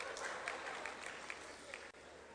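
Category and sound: crowd, audience clapping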